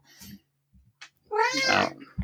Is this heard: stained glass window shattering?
no